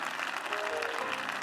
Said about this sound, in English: Come on, clap your hands and give him praise. Hallelujah.